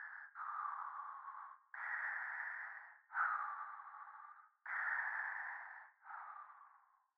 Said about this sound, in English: can you please cool it with the breathing? Makes this exercise so much more intense.